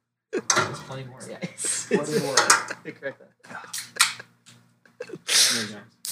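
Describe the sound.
Glasses clink together in a toast, with a few sharp, bright taps mixed among cheerful voices talking over one another.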